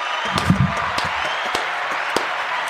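A short burst of applause, with scattered sharp claps over a steady wash of hand-clapping noise at moderate volume, heard without any talking.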